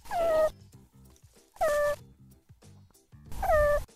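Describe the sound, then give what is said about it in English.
A meerkat gives three short, high-pitched move calls, the call meerkats make when they want their group to speed its hunt for food, recorded by the University of Zurich; each slides slightly downward in pitch, spaced about a second and a half apart over a faint low, pulsing background hum. “Here's what the meerkat move call sounds like.”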